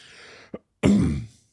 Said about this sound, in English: Don't be afraid to cough just straight into the microphone.